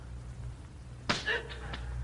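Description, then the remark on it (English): A sharp whip crack lands suddenly, trailed by a whistling swish and a second, lighter lash, all over a low steady hum with no talking, as Japanese soldiers beat a person with whips and blackjacks. “For I am being beaten, too, by Japanese soldiers. These men holding the whips and blackjacks in their hands have been cuffed and beaten themselves.”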